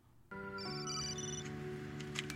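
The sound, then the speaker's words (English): A phone rings with a bright electronic ringtone: a short melody of sustained, stepping tones starts abruptly and plays loudly without pause, with no one speaking. “First thing she does is she calls Sandy, who's driving around looking for her.”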